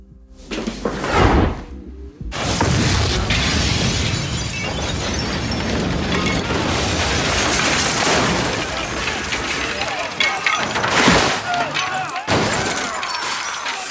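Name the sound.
explosion sound effect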